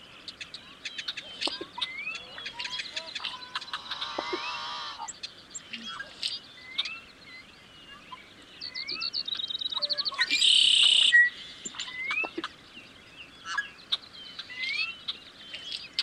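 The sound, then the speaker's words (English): A busy chorus of marsh birds calling at dawn in Yellowstone National Park, in a small valley ringed by low hills covered in sagebrush and some conifers, with overlapping chirps, whistles and trills, punctuated by a couple of louder, buzzy, rasping bursts. No one speaks. “Yellowstone Bison and Marsh Birds”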